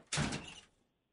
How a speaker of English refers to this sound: She's mad. That was aggressive door slam today. She's legitimately mad at me.